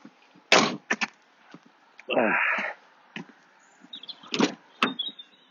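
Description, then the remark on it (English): A car door unlatches and swings open with a sharp click and a short creaking, rumbling sweep, followed by a few scattered knocks and clunks, with no talking. “And then open the door.”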